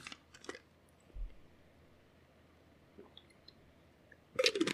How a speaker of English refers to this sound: All right, and now we're going to Zechariah 5, and I got to have some water.